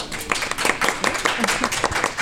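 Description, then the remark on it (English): A small group applauds steadily for a panel, with dense overlapping claps at moderate loudness for a couple of seconds, no voices standing out. “so a round of applause”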